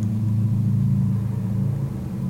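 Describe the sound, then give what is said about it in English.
A pickup truck rumbles steadily in the distance, heard from a hotel room in Bend, Oregon, its low engine drone holding constant for a couple of seconds with no voices over it. “Ooh, sounds like a pickup truck in the distance from a hotel room in Bend, Oregon.”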